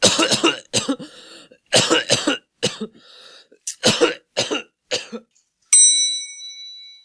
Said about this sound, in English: I just needed a cough. You know how sometimes when you cough and it gets you, like, pushes you over the top? It's like when you swing the hammer thing at the fair.